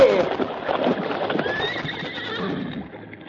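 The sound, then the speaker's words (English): A bay horse whinnies in a long, wavering, high-pitched neigh lasting about three seconds as it struggles to pull a load through water, with a rough, busy clatter of hooves and movement underneath. “the load was more than the struggling bay horse could budge”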